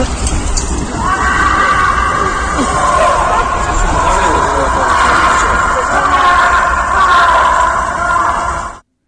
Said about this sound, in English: Sounds like he's in a shaft. All you hear is him screaming while he's falling, and then when he starts bouncing on the bungees. Right. That's those screams at the end, if you can go back on those, that's him bouncing and screaming.